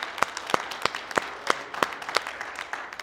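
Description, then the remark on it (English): An audience gives God a hand clap together in unison, a steady beat of sharp, fairly loud claps roughly three per second over a softer wash of scattered clapping, with no voices. “Let's give Him another hand clap, if you wouldn't mind, together, please.”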